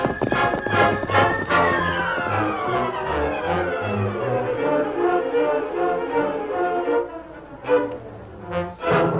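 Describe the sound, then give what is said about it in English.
Horses' hooves, of the horses Silver and Scout, gallop off in quick, uneven beats, mixed under loud orchestral music that swells and carries on, with a few more sharp hoof clatters near the end. “Come on, Silver. Get him up, Scout.”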